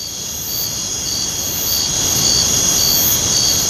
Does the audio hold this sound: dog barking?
no